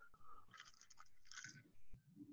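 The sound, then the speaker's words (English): Wet chewing of a big wad of chewing tobacco, with moist smacking and squelching mouth sounds repeating unevenly over a couple of seconds, fairly quiet and with no talking. “Got a big old chew in my mouth, so I'm not drinking right this second.”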